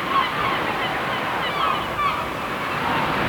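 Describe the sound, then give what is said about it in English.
Seagulls flying above a sunny beach cry out in short, sharp calls above a steady, loud wash of crashing surf, the broad roar of waves filling the background throughout. “Sun's blazing down, the waves are crashing in, and the seagulls are flying above, dying to get their hands on my fish and chips, but it's not happening.”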